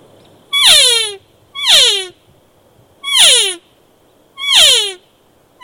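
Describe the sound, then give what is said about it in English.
Four loud, nasal, raspy elk cow calls blown on an open reed elk call with a camouflage barrel, imitating a young cow; each a short descending mew with a harsh, buzzy tone, spaced evenly about a second apart with silence between. “To me, it sounds a little more like a young cow. It's got a little more rasp, a little more nasal quality to it.”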